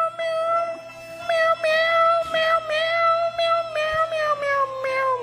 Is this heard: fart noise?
no